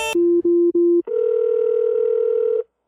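A phone hangs up with a sharp click, followed by three short low beeps and then a long, steady, buzzy dial tone lasting about a second and a half before cutting off.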